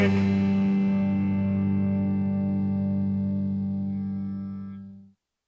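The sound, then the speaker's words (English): The theme song of a Talk Radio NYC show ends on one loud, sustained electric guitar chord with heavy distortion and effects. It rings out for about five seconds, then cuts off, with no voices. “Powell, I was saying, for bopping around to my theme song.”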